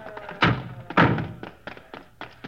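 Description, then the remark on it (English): Two heavy thuds land about half a second apart, followed by a few lighter knocks and rattles, as a stuck car door is yanked hard until it gives. “Hey, that door's stuck.”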